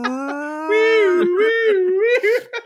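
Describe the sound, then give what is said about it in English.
A voice imitates a siren, like the Showtime at the Apollo siren used to pull an act off stage: a loud, continuous wail that rises slowly, then wavers up and down in pitch for almost three seconds, with a few brief breaks near the end. “You hear the sirens going off.”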